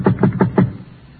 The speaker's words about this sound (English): I went up and knocked on his door.